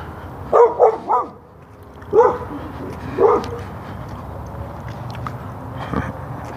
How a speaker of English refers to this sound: Dog's following me along. He's inside the fence, I'm outside the fence. Which is what I hope will stay.